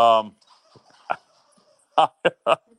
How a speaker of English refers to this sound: Yeah, my dog has decided she really wants to play with her squeaky toy, so I've been leaving myself on mute here.